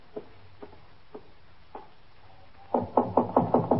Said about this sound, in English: Cross the room and in that door. All right, thank you. Just knock on the door.